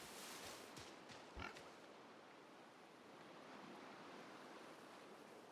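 A few short, pig-like oinking grunts from an Oink, a pig creature in a Pokémon video game that is trying to fight the player, in the first second and a half, then steady whooshing wind or surf-like ambience near cliffs continues alone.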